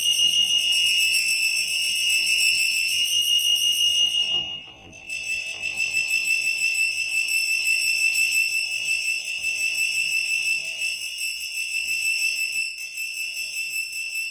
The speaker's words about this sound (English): Attention, Good Shop customers. For the next 3 minutes, we will be testing our disaster alert system. Please cover your ears if loud noises cause you discomfort.